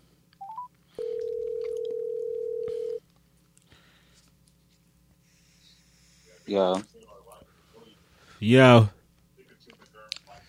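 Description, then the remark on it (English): A couple of quick phone-dialing beeps as someone calls a friend, then a steady electronic ringing tone holds for about two seconds before cutting off; two short bursts of voice follow a few seconds later. “All right, so, let me call my mans.”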